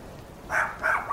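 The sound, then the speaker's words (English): Two quick dog barks in succession, with the start of a third, set against a steady soft hiss of background noise. No one speaks. “would you take the dogs outside?”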